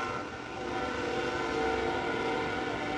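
A train horn sounds steadily for several seconds, its sustained tonal blare carrying over the low rumble of a train passing on tracks by a ballpark during a night baseball game, moderately loud, with no talking.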